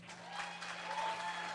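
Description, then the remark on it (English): An audience claps to show it prefers the masturbating joke, a dense wash of many hands at moderate volume that holds level for the whole short stretch, with no talking over it. “Applause if you'd prefer the masturbating.”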